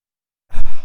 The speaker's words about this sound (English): Okay, hold on just a second. I'm going to blow my nose.